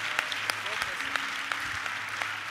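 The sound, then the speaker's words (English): An audience claps together, a dense, steady wash of applause with sharper individual claps popping out at irregular moments, sustained at an even level for a couple of seconds. “Are you clapping? Clap.”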